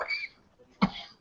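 Two harsh coughs less than a second apart, the second sharper and louder, close to the listener with a brief quiet gap between them.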